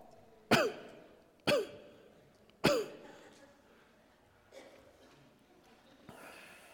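Three harsh, forceful hacking coughs come in quick succession, loud, followed by a couple of softer, rougher sounds like breathy throat-clearing as things quiet down.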